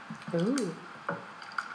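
Strawberries being muddled in a cocktail glass: a few wet, squishy presses and soft thuds, with a short vocal murmur near the start.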